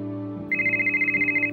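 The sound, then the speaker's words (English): A phone rings with a single burst of high, rapidly warbling electronic trill lasting about a second, fairly clear over a low steady background hum. “My phone rang.”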